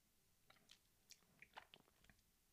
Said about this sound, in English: So the article states, let me take another sip.